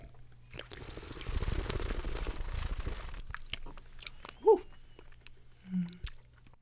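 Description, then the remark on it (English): Someone slurps wine for about two seconds while tasting it, pulling air over the tongue, a steady airy, bubbling draw, followed by a couple of soft mouth sounds with no talking. “Let's okay, make let's that slurp. Sound.”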